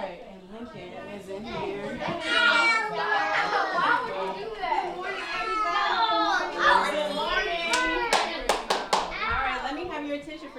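A crowd of about 20 children chatter, squeal and shout over one another at a Valentine's Day party in a house, a steady, noisy din, with a few sharp handclaps from a mom cutting through near the end.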